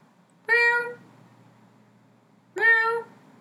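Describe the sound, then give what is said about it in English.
A black cat named Georgie meows twice, each call about half a second long with a rising, nasal tone, separated by a couple of seconds of quiet. The meows are fairly loud. “She's a black cat, and she realized that, oh, we're talking about death?”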